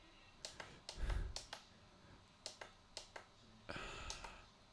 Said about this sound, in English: Turning the brightness, that clicking sound, I apologize. I'm going to turn the brightness up on my screen.